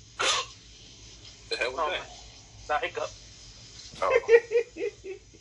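A sharp, loud sneeze bursts out, followed by a string of strained, pained-sounding vocal outbursts in three uneven bursts, the last one longest, over a low steady hum.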